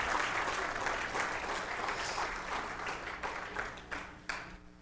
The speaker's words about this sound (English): Yeah, she's clapping.